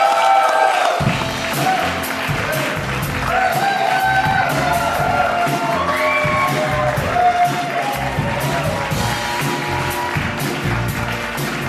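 A crowd claps and cheers steadily for about eleven seconds, a dense wash of applause with scattered whoops and shouts rising above it, loud and sustained throughout.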